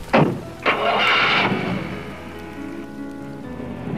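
A couple of sharp clicks, then a car engine cranks briefly and catches, settling into a steady low idle rumble, with no voices.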